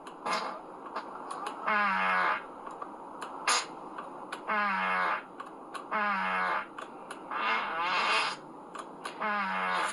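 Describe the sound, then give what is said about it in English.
A Tesla car's fart-on-demand sound effect plays inside the car again and again, about five buzzy, rippling bursts each lasting under a second, loud, separated by short pauses with faint clicks between. “I don't know how to put it on my horn, but I know how to, like, you know, fart on demand so I can go. Can you hear that?”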